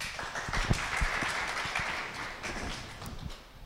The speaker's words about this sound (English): Come on, give her a round of applause.